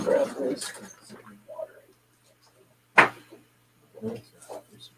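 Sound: dog whimpering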